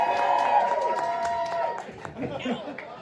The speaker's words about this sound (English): Big round of applause